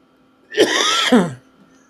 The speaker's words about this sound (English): I want to back up there because I was coughing pretty good.